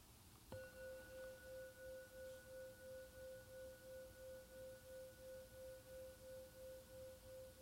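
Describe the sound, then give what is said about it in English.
A single meditation bell is struck once to mark the end of a meditation and rings on with a steady, pure tone, its sustained hum gently pulsing as it slowly lingers for several seconds with no talking. “And when the next bell sounds, it will be the end of the meditation.”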